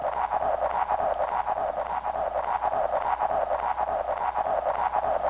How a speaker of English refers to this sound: We got a pretty cool sound, I think, right now. This is just reverb and delay. Built in, free, on pretty much any computer that has sound software.